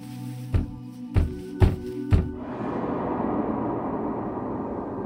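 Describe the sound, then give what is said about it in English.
Four firm knocks on a front door in an uneven rhythm, over a low steady hum, followed by a continuous broad rushing noise once the knocking stops. “I was about to ask Mama just how late she'd let me stay up when there was a knock on the front door.”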